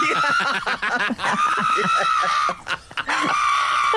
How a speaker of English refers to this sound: And the pug screams like a human as he's getting his nails clipped. Here he is.